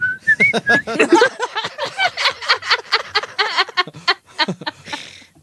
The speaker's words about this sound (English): I think when she sprays her crotch, then you hear the Old Spice whistle in the background.